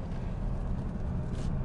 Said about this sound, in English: Oh, look. Two more cars have come past us. Fun. He's on the corners.